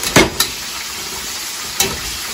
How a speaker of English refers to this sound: That does look pretty good. And these potatoes. Anything bubbling in a pan, no matter what the fuck is in there, it looks good. And mash never looks bad, really.